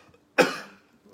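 A single sharp cough from a speaker opening a Maharingi Vineyard Church Live Sunday video bursts out and trails off quickly, with near silence before it and a faint rustle after.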